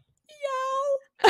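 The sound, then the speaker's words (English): A single long, drawn-out meow from a cat named Junior, with a steady, slightly rising wail, loud, followed right after by the sudden start of a voice. “And cats make me laugh so hard.”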